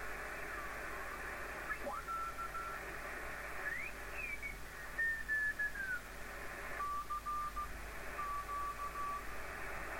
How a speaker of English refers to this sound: There's a tone and Morse code. Now I'll try and notch that out.